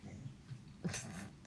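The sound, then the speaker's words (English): A female dog pants in quick, low, rhythmic breaths, broken partway through by a single sharp, breathy snort. Another short puff of breath comes right at the end. “She's also probably going to be panting for a minute.”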